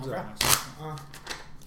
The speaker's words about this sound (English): Shuffle them up and deal. Six cards, my friend. Here we go. 4, 5, and 6.